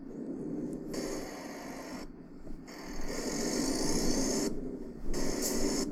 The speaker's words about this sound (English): And this Volvo, this big Volvo truck, look out the window. Oh, I like that you can, that's me poking my head out the window, listeners.